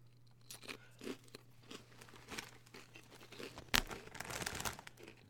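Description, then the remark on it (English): Crunching of pizza-flavored kettle cooked potato chips: a run of irregular, crisp crackles and crinkles with one sharp, louder snap partway through, and no voices. “You got to have a good bendy for the kettle cooked ones.”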